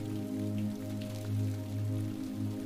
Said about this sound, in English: Rain slips down the window, adding to the ambiance and sound.